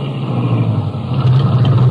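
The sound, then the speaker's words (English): A car engine hums steadily, a low droning rumble that shifts slightly in pitch as the car slows and pulls over on an old road because the back tire feels flat, in wet conditions, with no voices over it. “The car feels funny. Must be this old road. No, it ain't the road. Feels like the back tire's flat. Maybe I better stop.”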